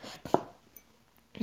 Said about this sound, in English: You hear that chopping in the background?